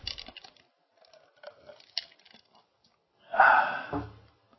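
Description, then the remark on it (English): Someone takes a drink of water: faint wet mouth clicks and small sips, followed by a louder, breathy gulp and swallow near the end. No talking. “Get some water.”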